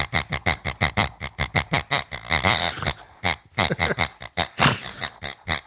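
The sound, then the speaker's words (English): A small blue pig toy lets out a long run of laughing oinks, rapid snorty bursts repeating in a bouncy rhythm, loud with no talking. “So now I'm gonna make the pig laugh.”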